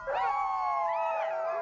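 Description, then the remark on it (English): Dogs howl in a long, unbroken wail that rises and falls in pitch, fairly loud, with a whimpering edge and no voices. “Far from the beaten path, the dogs discovered a strange patch of earth and began to dig.”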